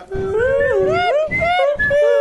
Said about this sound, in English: I start whistling the theme from Bridge Over the River Kwai.